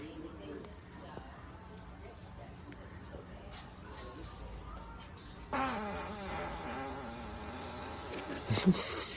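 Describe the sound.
A loud, buzzy fart rips out midway and drags on for a few seconds, standing out over people talking in the background.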